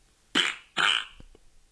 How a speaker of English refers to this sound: Oh, I want to hear the most played fart. This one on this is Ultimate Fart Soundboard, but it's not the right one that we've used. It's a ripoff. But the number one is Jurassic Farts. Okay. So, oh, is this going to sound like? Here we go.